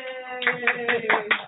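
A handful of people in a studio clap in a steady rhythm, about five evenly spaced claps, over a sustained humming voice that carries on underneath.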